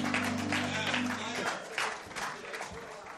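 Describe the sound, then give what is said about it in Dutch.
A crowd at a church claps steadily and fairly loudly for the band throughout, with a low sustained musical tone underneath that fades out after about a second and a half, leaving only the applause. “Give the band a hand.”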